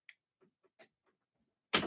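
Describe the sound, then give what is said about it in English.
A few faint clicks and taps, then a sudden loud thud near the end as a door that is not latching is shut, with a brief rumbling tail. “Please shut the door, please.”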